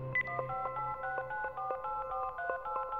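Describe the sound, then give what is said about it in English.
A rapid series of electronic keypad tones as a number is dialed on a cell phone to call someone's brother, each short beep pitched differently, steady, with no voices present. “We had a cell phone. I says, you think you could call your brother?”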